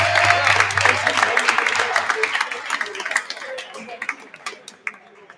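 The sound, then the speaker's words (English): A small group claps their hands for a school coach in a steady, dense burst of applause that gradually thins out and fades toward the end, moderately loud. “Let's clap that up. We gotta show him the love.”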